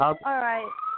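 A loud emergency vehicle siren wails, its harsh, buzzy tone sliding in pitch across a brief burst before settling into a steadier high note.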